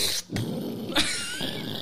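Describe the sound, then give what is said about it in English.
A voice imitates snoring with the mouth closed: a rough, low, growly nasal rumble held for nearly two seconds, broken by two brief sharper breathy bursts. “It just snores. You have your mouth closed.”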